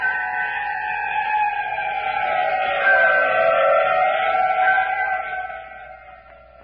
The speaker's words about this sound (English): Outside, the ravaging howls of the wolfmen. Khmer priests answering the call of the leader of the pack.